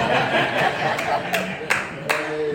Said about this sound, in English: You like that, didn't you? Doing that clapping, I like that.